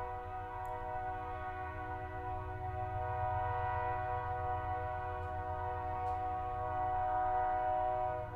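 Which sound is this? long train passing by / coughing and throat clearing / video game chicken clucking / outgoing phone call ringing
long train passing by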